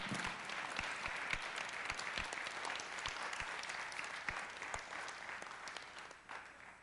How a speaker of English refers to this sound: And I just want to ask you, would you just give them a warm welcome with applause?